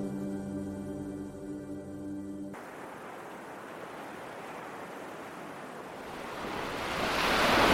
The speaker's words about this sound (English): Around Urashima's boat, the wind suddenly blew extra strong, making the waves climb extra high. Urashima's boat began to rock roughly from side to side, and he tried to hold on tight.